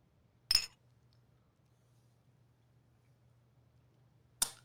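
Two bright glass clinks in a toast, each a sharp ringing tap, spaced several seconds apart over a quiet room with a low steady hum and no talking.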